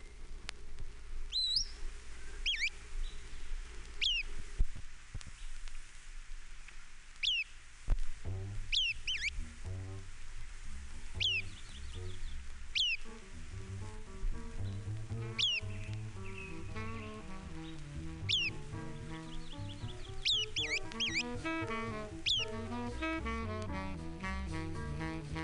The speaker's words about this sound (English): MacGillivray's Warbler. 8 examples.